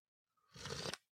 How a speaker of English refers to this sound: And join me in this sip of cafecito.